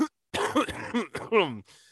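A person coughs and clears their throat, a cluster of rough, voiced hacking bursts with a brief gravelly groan, then a faint breathy trail as it fades.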